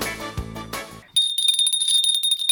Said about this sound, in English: It's a big piece of equipment. We bought it at the dollar store. This is our bell that signifies the odd and the offbeat